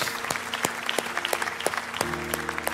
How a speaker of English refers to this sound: Let's give God a round of applause today, can't we?